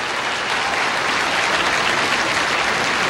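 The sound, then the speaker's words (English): A large crowd at an awards ceremony applauds steadily as Babylon 5's "Severed Dreams" is announced the winner, a dense, even wash of clapping that holds at a loud level for the whole stretch, with no voices standing out. “Look at that crowd, Andy. That's awesome.”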